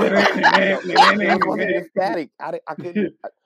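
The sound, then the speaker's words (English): A person imitates radio static with a crackly, hissing mouth noise for nearly two seconds, fairly loud, followed by a few short voiced bursts with brief pauses between them. “Were you spitting a loogie or what was that? No, it was supposed to be static.”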